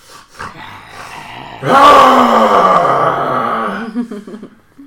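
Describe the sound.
A person's voice imitates a werewolf roaring in someone's face: after a few soft breaths, one long, loud, gravelly growl bursts out, holds for about two seconds with a slowly falling pitch, then trails off into rasping breaths.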